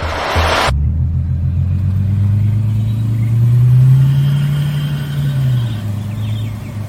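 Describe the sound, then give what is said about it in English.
The engine of a car being given away as a prize turns over and settles into a loud, throaty idle, its low rumble rising in a steady rev around the middle before easing back down, with no voices. “It'll be the fifth car that we're giving away from Forbidden Knowledge.”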